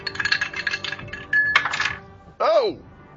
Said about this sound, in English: Oh! Okay, that wasn't even the right... It knocked one of my dice off onto my lap. That was hilarious.